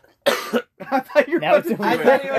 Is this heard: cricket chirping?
no